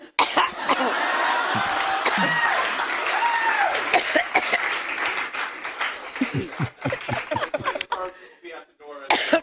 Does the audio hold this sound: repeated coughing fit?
yes